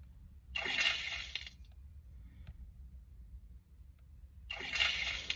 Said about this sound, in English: Come on, a bucket of water on you. Get a bucket of water.